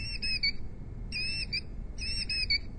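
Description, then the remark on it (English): A squeezed Audubon plush bird toy plays a recorded killdeer call: three shrill, piercing bursts, evenly spaced and fairly loud, over a steady low background rumble. “The killdeer, what a fascinating bird that is. This is what it sounds like.”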